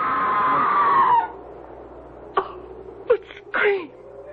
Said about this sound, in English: That was a scream, Sir Leonard. Not the wind playing tricks.